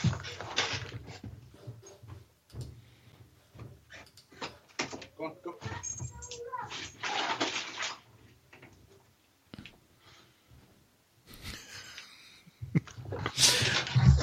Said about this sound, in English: Hold on, I've got to let the dog go.